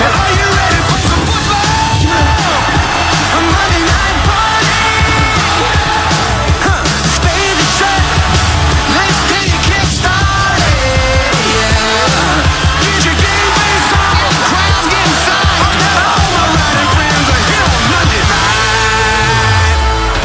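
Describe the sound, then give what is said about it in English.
A crowd of voices yells and bellows at full volume, screaming like Vikings, in a raucous, sustained roar that never lets up for about twenty seconds, dense. “So we're screaming Vikings.”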